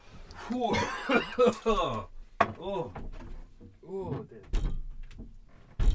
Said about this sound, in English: Door open.